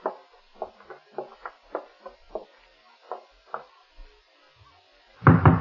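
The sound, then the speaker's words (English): A series of about ten firm, sharp, stern knocks rap on the wooden door of a ground-floor apartment in quick clusters, followed by a louder burst of rustling noise at the end. “the way you knock gives me the shakes, Nick. So stern and official.”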